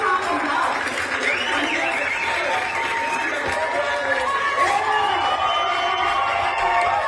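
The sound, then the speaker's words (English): A large crowd at a Williamson County Board of Education meeting, angry at the board, shouts and cheers over one another, a dense, steady roar of overlapping raised voices with scattered louder yells rising above it throughout. “You can hear the audience, and of course, they're angry, right, at the Williamson County Board of Education.”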